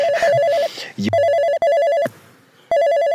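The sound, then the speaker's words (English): A phone rings with a loud, warbling electronic ringtone, repeating in several bursts separated by short pauses; it is the speaker's own phone, which they then answer. “So anyway, I had to answer my phone.”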